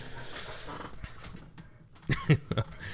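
A dog whimpers and pants, with soft breathy sounds giving way to a few short, louder whining bursts toward the end. No one speaks.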